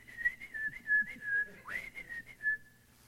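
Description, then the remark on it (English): Someone whistles a cheerful, chirpy birdsong imitation: a steady high tone broken into quick trills and warbles, with one sharp upward swoop midway, clear and fairly loud with no talking. “So the bird gets all happy and starts singing.”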